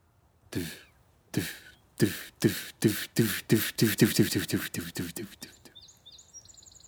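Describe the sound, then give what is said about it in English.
A voice imitates a ruffed grouse's drumming: low, soft thumps that start slow and speed up into a rapid roll, followed by faint bird chirps. “The sound we're searching for is a low, soft drumming noise that goes a little something like this.”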